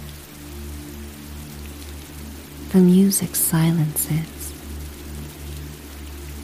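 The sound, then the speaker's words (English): Steady, even hiss of falling rain and howling wind with a low, constant rumble beneath it, continuing throughout while a voice speaks briefly in the middle. “and you are lost in the sounds of the falling rain and howling winds, drifting towards sleep, feeling safe and at home.”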